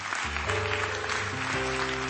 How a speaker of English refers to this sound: Clap your hands to the Lord and give him praise one more time.